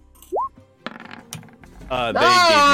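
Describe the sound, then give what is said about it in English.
Dice rolled for initiative clatter across a surface in a handful of quick, sharp clicks, preceded by a short rising whistle-like tone and followed by a loud, drawn-out voice. “Yeah, I fucking hate these dice, man.”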